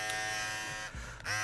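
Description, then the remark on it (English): Electric hair clippers buzz steadily with a bright, droning hum as they cut the hair around a baseball hat kept on the head, dipping briefly in pitch and strength about two-thirds through, then returning to full speed. No voices. “Now, keep the baseball hat on, and we're just going to cut everything around that.”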